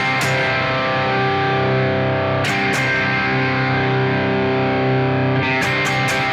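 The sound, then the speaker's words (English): A heavily distorted electric guitar played through a distortion pedal whose diodes knob gives it a buzzy, fuzz-pedal tone plays sustained chords, loud, with brief pick attacks and chord changes near the start, middle and end. “Okay, so the diodes knob makes it sound like a fuzz pedal, but it doesn't change the amount of distortion.”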